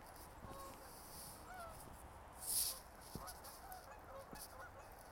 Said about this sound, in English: I just heard the geese flying overhead, getting ready to land down on the water.